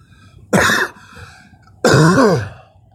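Two loud, sudden sneezes about a second apart, each a sharp breathy burst; the second is longer, with a voiced, falling tail. No one speaks.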